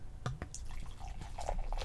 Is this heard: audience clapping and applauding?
no